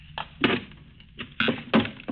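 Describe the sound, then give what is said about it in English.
Several sharp wooden knocks and scraping creaks come in irregular bursts as a hammer pries up the boards nailed over a boarded-up door, with short pauses between the efforts and no voices. “What are you going to do? Pry up those boards? Yes, they'll loosen up.”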